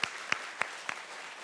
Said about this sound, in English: And so God bless you on your journey. Let's show them a good round of applause.